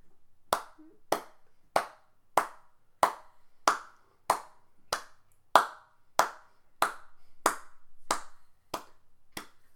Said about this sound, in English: And since you won, I would like to also give you a round of applause.